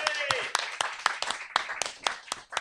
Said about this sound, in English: A round of applause for Ash Frith, everybody.